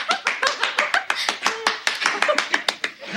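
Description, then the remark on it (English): A single woman claps hands alone in a quick, steady rhythm, each clap crisp, continuing without pause and with no voices or other applause around it, applauding enthusiastically as a sales manager is introduced. “And she's the only one clapping.”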